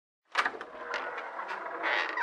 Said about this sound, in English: Careful now. Here's the front door.